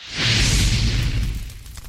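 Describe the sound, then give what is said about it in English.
A campfire, just lit outdoors in May, flares up with a steady whooshing roar and low rumble, scattered crackles and pops running through it, easing slightly toward the end. No one speaks. “Crackling, nice and warm. Nice. I mean, it's May, but it's still outside. Nice to get a campfire, right?”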